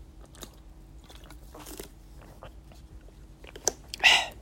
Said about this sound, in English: But before that, let me take a sip of water first.